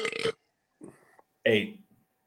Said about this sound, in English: I mean, there was a Homer Simpson burp. That was nice.